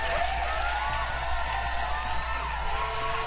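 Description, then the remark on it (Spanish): Steady, dense clapping from an audience applauding a singer, a continuous crackling wash of applause holding at an even loudness for about three seconds, with no voices over it. “¡Un aplauso!”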